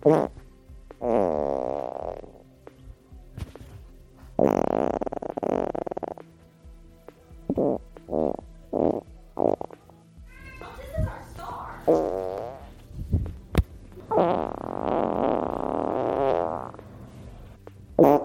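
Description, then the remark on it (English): A series of recorded farts: several long, rippling blasts alternating with a quick run of short puffs and some sputtering squeaks, fairly loud, with no talking. “First up, we have … with his farts. So, …, let's listen to what you got.”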